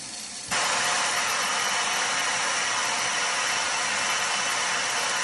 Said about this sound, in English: Okay, so when that first setting goes off, that spray setting on the faucet, I don't know why, but it freaks me out every time. It sprays so hard into the sink, the water jumps up, gets all over me, and it startles me every single time,